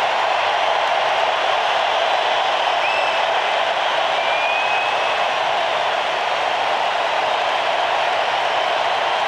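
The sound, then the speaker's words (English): A big baseball stadium crowd gives a standing ovation for pitcher Gerrit Cole as he is taken out after 7 2/3 innings, a loud, steady roar of cheering and applause that holds for the whole stretch, with a couple of faint whistles rising above it. “And listen to this ovation.”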